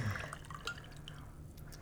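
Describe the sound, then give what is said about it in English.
Liquid trickles and drips into a glass, a soft gurgle with a few small splashes and bubbly plinks, fairly quiet, with no one speaking. “Do one final pour.”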